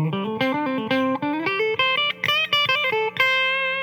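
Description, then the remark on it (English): A distorted electric guitar plays a quick major pentatonic lick, a steady run of bright single notes moving up and down in pitch, loud and with no talking over it. “Playing over songs in major keys, using the major pentatonic.”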